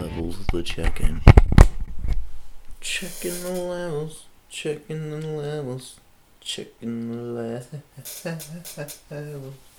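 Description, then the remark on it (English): A chair creaks and crackles in a quick burst of dry, clicking strains, then a man starts talking and keeps speaking over the rest. “Yeah, it's a fucking chair, man. You can hear that fucking chair, man.”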